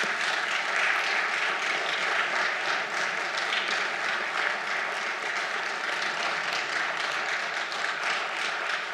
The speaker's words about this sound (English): But what I want to do, I want to ask everyone in here right now, if you just give all these folks a round of applause for what they do.